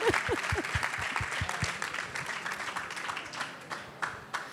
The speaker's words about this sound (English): Let me clap for myself too.